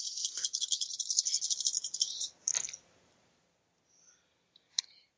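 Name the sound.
dice rolling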